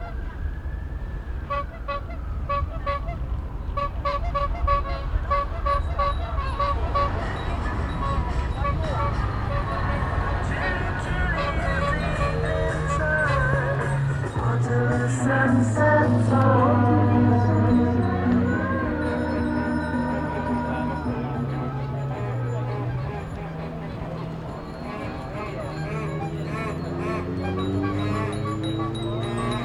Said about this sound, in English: So there's a lot of bells and a lot of horns and people kind of cheering along. Yeah, and music as well. People build sound systems and bring along their own music to play.